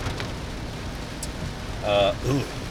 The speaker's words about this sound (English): It was heavy rain. This is not good.